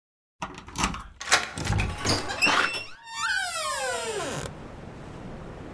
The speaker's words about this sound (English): Each episode will begin and end with a distinct cabinet sound, so when you hear this, be aware that what follows will be brief but damn interesting.